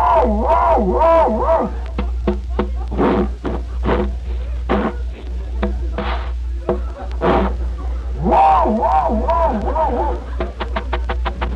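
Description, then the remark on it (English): An old car engine cranks with a wavering, whining grind and sputtering knocks over a steady low rumble, then breaks into a quick run of rapid, even pulses as it catches. “I'll be glad when you get rid of this piece of junk. Oh, it'll start this time.”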